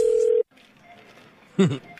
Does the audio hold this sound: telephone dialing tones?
yes